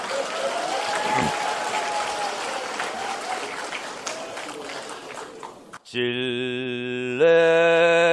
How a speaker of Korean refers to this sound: 그 노래 한번 불러도 되겠습니까? 박수 주십시오.